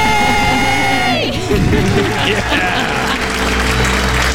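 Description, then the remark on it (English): A loud group of people screams and cheers together after a countdown, celebrating becoming debt-free, a sustained burst of excited shouting and whooping with a noisy crowd-like roar throughout. “Let's hear your debt-free scream.”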